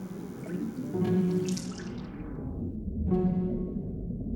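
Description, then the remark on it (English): Water sloshes and splashes steadily, a continuous wet churning that fades slightly before a fresh splash near the end. No one speaks. “Don't put your face in the water.”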